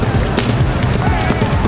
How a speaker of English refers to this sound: At last, the leading edge of the herd are in front of us. A phalanx of galloping beasts that shake the ground with their hooves. A great cloud of dust in the air above them.